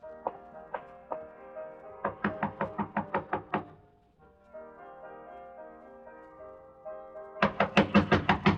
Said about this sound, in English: I waited for a few minutes after he left, and I walked up to her room and knocked on the door.